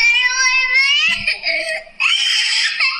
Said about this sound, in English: Oh, that my jaw dropped when I heard that peak that the scream gets to. I'm so familiar with that.